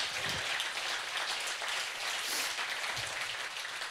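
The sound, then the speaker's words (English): A crowd applauds steadily for about four seconds, a dense, even patter of many hands clapping at a fairly constant level with no voices over it. “Yeah, that's worth a clap.”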